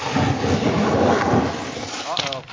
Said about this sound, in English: Apparently there's a jet taking off. Man. Holy cow. You live in an airport?